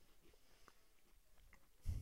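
Quiet, irregular crunching of someone chewing a crisp coffee wafer cookie, small crackly bites scattered over a couple of seconds, ending in a sudden louder muffled thump.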